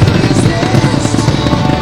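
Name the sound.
fireworks exploding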